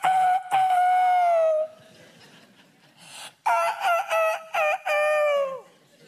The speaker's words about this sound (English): But from now on, when that rooster crows, I want you to learn how to answer him back. Hey, Mr. Rooster, you can crow if you want to.